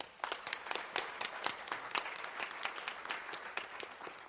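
An audience applauds as a novelist and assistant professor is introduced as a panelist: many hands clap in a dense, bright patter, with sharp individual claps poking through, holding at an even, moderate level throughout.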